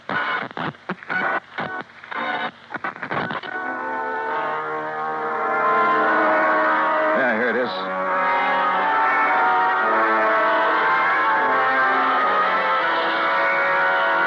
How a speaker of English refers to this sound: We shut it off because it got too noisy in the death scene from that opera, huh? Listen.